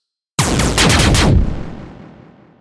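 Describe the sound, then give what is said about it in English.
Spaceship cannons fire, Rico and Terra's ships' left cannons along with four of a bomber's turrets: a rapid volley of loud, booming blasts in quick succession, about five heavy shots over one second, then trailing off into a long rumbling decay with no voices. “Rico and Terra's left cannons fire, along with four of the bomber's turrets.”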